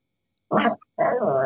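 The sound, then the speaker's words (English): A dog growls in two short rumbling bursts, a brief one followed by a longer, sustained growl after a short pause, clear with no talking. “He growls when he doesn't get enough attention.”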